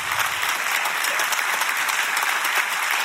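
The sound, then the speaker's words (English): An audience at a sermon claps steadily and loudly after being told to clap their hands, a dense wash of many hands clapping at once that holds at an even level throughout, with no voices standing out. “Clap your hands.”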